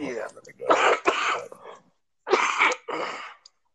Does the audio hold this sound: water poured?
no